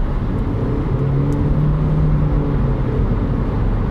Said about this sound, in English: Listen to this. This is what a CVT sounds like. I'm doing 56 miles per hour and I put my foot down. Watch this.